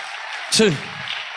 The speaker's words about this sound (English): Y'all give the Lord a hand clap for 3 seconds. Come on,